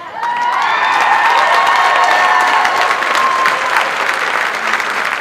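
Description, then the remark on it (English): A crowd applauds steadily with dense, sustained clapping, joined by high whoops and cheers rising over the top, loud throughout and easing slightly toward the end. “So I think it's the cheering as much as anything that bothers me.”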